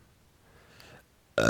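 A faint, gurgling build-up gives way to a sudden, loud, close-up burp that erupts abruptly at the end, with no talking around it.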